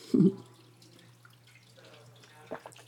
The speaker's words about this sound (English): So now that more people are really honing in and they're taking better care of their health, their hygiene, drinking more water, which I'm going to have a sip right now.